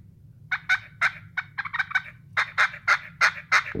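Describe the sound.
A hand-held turkey call produces a rapid, rattling gobble: a quick burst of about a dozen throaty notes that builds in loudness, heard clear over a low background rumble.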